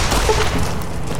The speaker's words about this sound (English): Okay, other weapon. Other weapon. That exploded. It hit, like, the top of the door frame.